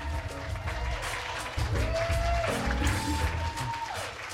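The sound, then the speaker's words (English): A steady round of applause for a show's behind-the-scenes team, many hands clapping densely, mixed with crowd noise and a few sustained tonal notes over the top, holding at a fairly loud level throughout. “An interfaith round of applause for all of you.”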